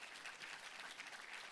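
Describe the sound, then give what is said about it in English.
An audience claps steadily, a dense, continuous patter of many hands with no voices over it, holding an even level throughout. “Okay, you don't have to clap.”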